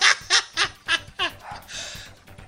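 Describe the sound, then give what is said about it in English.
A dog vocalizes in five quick, evenly spaced yelping bursts, each rising and fading, followed by a softer, breathy trailing sound. “See, even my dog's laughing.”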